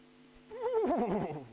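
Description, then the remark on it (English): A person imitates a horse's whinny: a single wavering, quavering cry lasting about a second, rising out of quiet and trailing off, with no other talk. “Come on, but you've got to harness the spirit of the horse here.”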